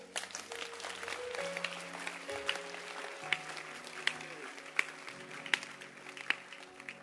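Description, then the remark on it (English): An audience claps hands together, a dense patter of many hands that settles into sharp, steady rhythmic beats, with sustained musical tones playing underneath. “Clap your hands.”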